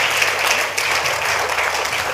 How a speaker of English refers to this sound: Give the Lord a good clap for that revelation.